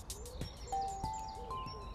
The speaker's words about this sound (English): But lots of birds twittering.